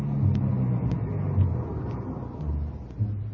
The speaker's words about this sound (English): Mr. Sullivan came out, got in the car, and we drove off